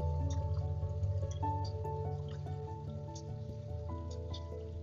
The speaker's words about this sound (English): You can hear nearby the sound of water.